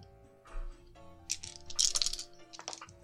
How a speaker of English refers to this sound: And I would like you to roll 4d6, please.